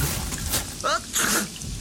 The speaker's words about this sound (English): But in it, he does a sneeze, and I suppose the question is it real?